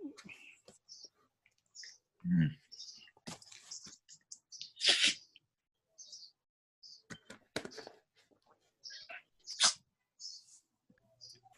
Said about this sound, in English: Let me close my window real quick. Got dogs barking.